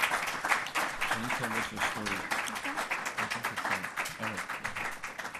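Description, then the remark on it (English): A crowd applauds steadily for several seconds to welcome a girl to Washington, a dense, even wash of many hands clapping at a fairly loud level, with a few voices faintly audible underneath. “Let's welcome her to Washington with a round of applause.”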